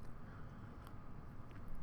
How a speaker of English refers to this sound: And this is when I sip my coffee.